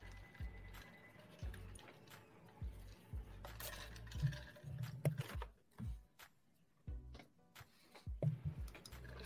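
Someone sips an iced drink as ice cubes clink and rattle against the glass in repeated light taps, with low shuffling thumps underneath and no talking.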